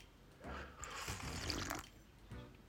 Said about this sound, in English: But hang on a second, I need a sip of coffee myself.